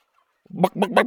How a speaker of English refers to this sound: The chickens crowded around and clucked excitedly down below.